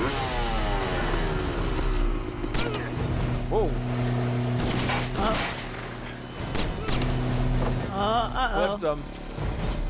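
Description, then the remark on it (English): A motorcycle engine revs in rising, whining sweeps during a movie action scene in which a man rides the motorcycle, amid a busy mix with sharp gunfire bursts, sustained musical tones and occasional voices underneath, all loud. “Gotta jump off that motorcycle because it's gonna explode for no reason.”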